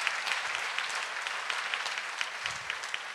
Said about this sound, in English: Now we should give a clap offering to the Lord because he deserves all the glory.